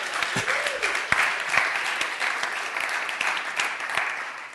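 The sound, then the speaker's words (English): An audience applauds Navigate Training School students, a dense wash of many hands clapping at an even level for several seconds, with a few sharper individual claps and faint voices mixed in. “A round of applause for these guys right here.”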